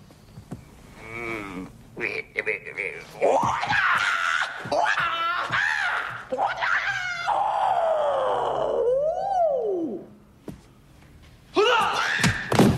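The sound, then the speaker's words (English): A voice imitates a martial-arts movie fight, with a string of loud, sliding kung-fu yells and screeches, a few brief thuds for kicks, and a falling wail before a final burst of shouting. “And then he starts sparring with the guy, and he screams, and then the other guy, like, kicks him in the face and knocks him down.”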